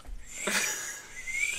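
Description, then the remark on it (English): A breathy, airy attempt at whistling: mostly rushing breath with a thin, faint tone that wavers and slowly rises in pitch, never quite becoming a clean whistle. “I'm trying to whistle.”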